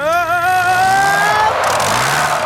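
Kevin the crane skids towards the edge of a dock: a loud, high-pitched skidding squeal with wavering tonal overtones holds for about a second and a half, then breaks into a rough, hissy scrape that trails off. No one speaks.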